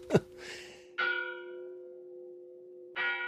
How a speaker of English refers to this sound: People were summoned to church by bells. That was a message being sent. And the bells rang over the hills and the dales, and people heard them and answered the call.